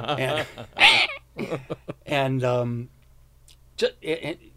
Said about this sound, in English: Oh, sorry, scared the cat.